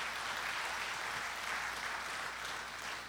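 An audience applauds the mothers present at the service, many hands clapping together in a dense, even wash of sound that stays loud for a few seconds with no voices on top.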